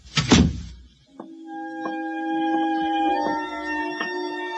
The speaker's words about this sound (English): Close the kitchen door behind you.